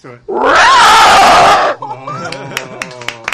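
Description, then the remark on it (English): A voice imitates a pterodactyl with one loud, harsh, rising-and-wavering screech lasting over a second, then breaks into chattering laughter and talk. “I'm gonna try a pterodactyl right here.”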